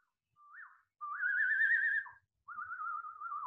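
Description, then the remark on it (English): A person whistles by mouth to imitate a bird call over a Zoom video call: a short rising chirp, then two longer warbling, trilled phrases, clear with no talking. “I learned this when I was a kid, actually, to sort of create bird sounds with my mouth.”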